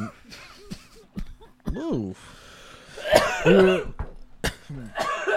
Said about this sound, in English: You're making me cough.